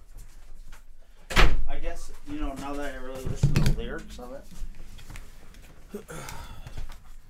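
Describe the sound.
A door with a door code clunks loudly as it is opened to let someone in, followed by the rattle and thump of it moving again a couple of seconds later, with muffled voices talking in the background.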